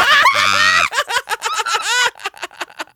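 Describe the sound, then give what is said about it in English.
A person screams loudly into the microphone for almost a second, harsh and distorted, then breaks into quick, breathy bursts of laughter. “So sorry, I just screamed into the mic.”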